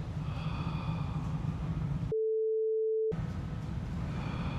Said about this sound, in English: Can you hear? This is a hearing test. If you can hear this, simply nod.